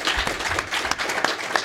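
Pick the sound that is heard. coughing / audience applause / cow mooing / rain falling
audience applause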